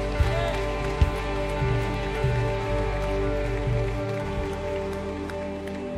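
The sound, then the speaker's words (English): A church audience at a worship service at Stevens Creek Church claps hands steadily, a dense, continuous patter of many overlapping claps over a sustained musical hum, with a few sharper claps standing out. “Clap our hands.”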